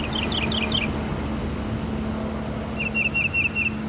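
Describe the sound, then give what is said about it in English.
A mockingbird sings two different phrases: a quick burst of repeated high, downward-slurred chirps, then after a pause a rapid whistled trill, all over a steady low background hum. “a typical male can sing up to 400 different songs. Most, if not all of them, are stolen from other species”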